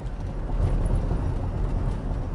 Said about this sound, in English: Today it's being produced in the front seat of a 2003 Toyota pickup truck with 157,000 miles on it.